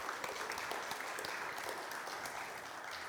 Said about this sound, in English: You don't clap him, you clap me at the end.